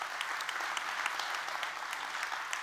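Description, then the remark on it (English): A large group claps steadily together for the coffee shop volunteers, a dense, sustained wash of many hands applauding at once with no one speaking over it. “Let's give all of them a good hand clap.”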